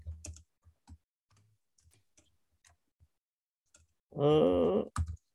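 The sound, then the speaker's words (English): Sparse, irregular taps on a computer keyboard, quiet, with gaps between keystrokes, followed near the end by a brief loud groaning vocal sound and a final click. “Man, you are struggling today typing, huh?”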